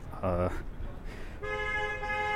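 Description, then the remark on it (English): Street noise at night in New York with a car horn: a brief, loud honk, then a longer steady horn tone held for about a second over a constant low traffic rumble. “I'm sorry if the street noises were annoying.”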